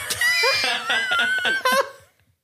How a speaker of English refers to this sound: It's so good. So I clipped that out. Now I have just that scream. Anytime we need this. I'm going to make that my text message notification.